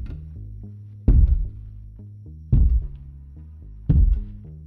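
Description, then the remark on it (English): Heavy footsteps at a zoo land in three slow, booming thuds spaced evenly apart, each a deep, loud impact that rings out briefly over a steady low humming background. “He heard heavy footsteps.”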